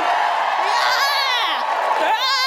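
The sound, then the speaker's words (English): A crowd cheers loudly and steadily for immigration after the speaker announces getting a visa, with high, wavering whoops and shouts rising and falling over a dense wash of voices for the whole stretch. “Give me a cheer for immigration!”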